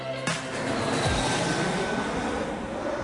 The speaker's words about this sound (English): And there we go, 2.5 minutes later, the next plane landed.